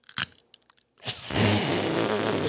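Teeth biting on a pen: a few sharp, crunchy clicks in quick succession, then a brief pause before a louder, steady grinding crunch that continues for over a second.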